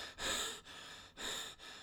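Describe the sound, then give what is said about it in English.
A man pants heavily, gasping for breath in four quick, ragged cycles of inhaling and exhaling, fairly loud, with no talking, as he arrives at a door and leans on the doorframe. “arrives at the door and leans on the doorframe, gasping for breath.”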